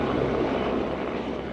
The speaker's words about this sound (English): The skies are buzzing with helicopters.